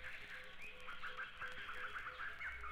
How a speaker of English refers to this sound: sunrise. Birds at dawn.